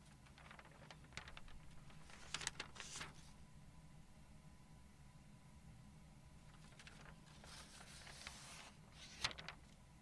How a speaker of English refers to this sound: Pages turning.